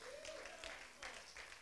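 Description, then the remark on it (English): Faint audience applause, a steady wash of scattered clapping with a few louder surges, and a brief high vocal whoop rising over it near the start. “Some of you guys aren't clapping because you're like, ooh, that's me.”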